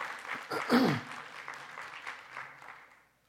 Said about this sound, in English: Don't you just love our worship teams? Yeah. Give them an applause.